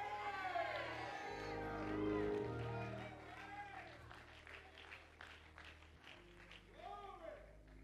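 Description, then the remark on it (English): A large crowd claps and shouts continuously, with voices whooping and calling out over a sustained musical backdrop, loud throughout; people shouting, clapping and lifting their hands during a worship song. “Don't stop the lifting of your hands. Don't stop your shout. We need your shout.”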